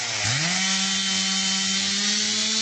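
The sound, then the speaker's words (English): Wood being sawn for firewood with a loud power saw: the engine whines up in pitch at the start, then holds a steady, continuous buzzing drone throughout, with no voices. “Somebody making firewood.”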